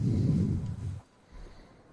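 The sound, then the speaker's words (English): A heavy breath, a loud, rumbling, low exhale lasting about a second, then a quieter, softer breath that trails off. No one speaks. “God, you're breathing so heavy.”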